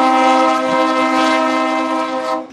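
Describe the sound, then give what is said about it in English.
A loud, sustained train horn blares steadily for a couple of seconds, its rich harmonic chord held without a break before cutting off abruptly at the end. “Oh, train horn.”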